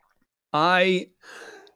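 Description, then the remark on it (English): A single loud sneeze: a sharp voiced intake that rises in pitch, then a brief breathy burst trailing off into quiet. “Bless you.”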